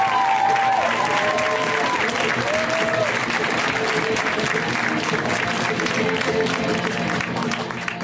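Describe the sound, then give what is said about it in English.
A crowd at a comedy show in Los Angeles applauds comedian Shane Torres steadily and loudly for the full stretch, dense clapping with a few whoops and cheers rising over it, tapering slightly at the very end. “Guys, give it up for Shane.”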